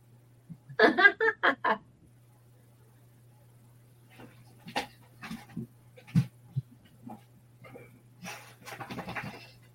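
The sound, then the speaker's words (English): A puppy whimpers in a quick run of high, pulsing cries near the start, then scattered soft scuffles give way to breathy panting toward the end over a faint steady hum. “Hopefully, it's a good idea, though, if I ever get a puppy again.”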